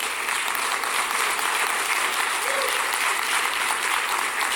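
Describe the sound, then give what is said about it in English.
Hand clapping fills the whole stretch, a steady, dense patter at moderate volume with no pause, carried over a faint room hiss and no clear talking. “So, thank you for that 1.5 hand claps.”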